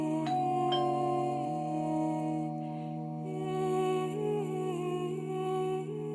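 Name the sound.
doorbell ringing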